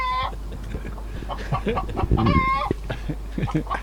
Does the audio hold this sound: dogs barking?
no